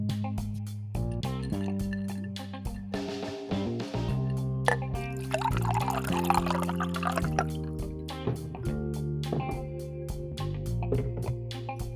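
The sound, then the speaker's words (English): Water pours steadily into a glass for several seconds, with soft splashing and trickling over a rhythmic, moderately loud background music track. “But before we get into that, let's pour some water because I'm getting thirsty.”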